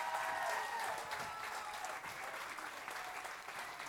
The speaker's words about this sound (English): Would you give all our actors a big round of applause this morning?